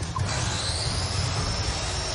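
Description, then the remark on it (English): A handsaw is switched on and whirs steadily, a continuous mechanical drone with a thin high whine over a low rumbling hum, holding an even level throughout with no voices. “It sounds like someone turned the handsaw on.”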